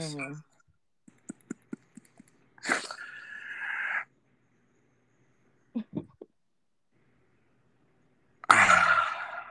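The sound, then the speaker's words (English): Two loud, rough breaths, a long huffing exhale and later a heavy gust of breath, with a few soft clicks and taps in the quiet between them. “You breathing all heavy and shit.”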